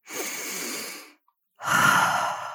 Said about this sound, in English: In through your nose, out through your mouth. In like you're smelling a rose, out like you're blowing out your birthday candles.